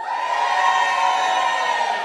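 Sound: crowd cheering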